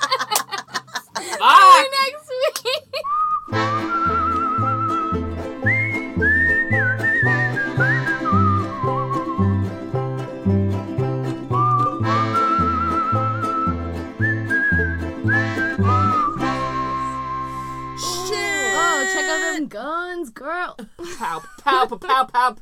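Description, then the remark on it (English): Someone whistles short, high sustained blasts in imitation of an air horn over a steady, thumping musical beat, with brief voices and laughter at the start and end. “That's what I think an air horn sounds like. A little bit more high-pitched, I think.”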